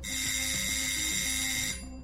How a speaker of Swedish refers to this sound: Mary blir förvånad när det plötsligt ringer på dörren till lägenheten.